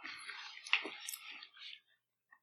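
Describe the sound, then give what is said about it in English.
Crunchy chewing of a crisp rice snack (Rice Chex), a quick burst of crackly bites and mouth sounds over about two seconds, fading to a faint final click. “A very weird texture. I'm very crunchy.”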